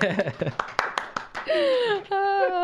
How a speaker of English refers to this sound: Can we get a clap here?